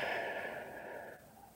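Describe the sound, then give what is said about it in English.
A slow, deep exhale of breath during a guided breathing exercise, fairly soft, airy and steady before gradually fading out over a second or so, with no talking. “And breathing out,”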